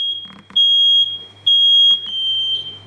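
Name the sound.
smoke alarm beeping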